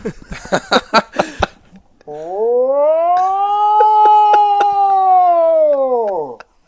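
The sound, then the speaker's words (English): Brief talk, then a voice imitates a World War II air-raid siren: one loud, sustained wail lasting about four seconds, rising slightly, holding steady, then sliding down in pitch as it fades. “It's supposed to sound like a World War II air raid siren, and we'll do it for your audience because this is what they're tuning in for.”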